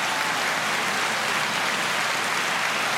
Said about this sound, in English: Okay, y'all get a hand clap on that one. Yeah. Yeah.